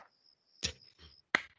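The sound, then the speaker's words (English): Two sharp, loud clap-like hits land about three-quarters of a second apart, the first following a thin, steady high-pitched whistle that fades out just before the second hit. “I love the clap hit. The clap.”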